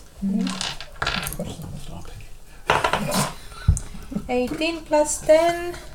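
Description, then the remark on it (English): Dice are rolled for a constitution saving throw, clattering and tumbling across a tabletop in a few short bursts of hard rattling clicks, followed by people talking. “Where's my dice? Where's my dice?”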